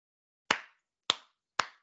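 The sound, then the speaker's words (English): Three sharp, crisp hand claps spaced evenly about half a second apart, a deliberate slow clap with silence between each clap and no voices. “I'll take a slow clap. I'll take any clap.”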